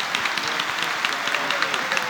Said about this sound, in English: Can we give him a clap for that?